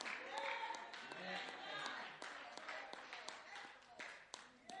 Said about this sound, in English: That's right. Clap, baby girl. See over there clapping.